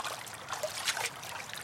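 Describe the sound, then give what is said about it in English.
Soft, steady trickling of river water with a gentle bubbling flutter as water is collected from the river, fairly quiet and continuous throughout, with no voices. “Then pranced down to the river to collect water.”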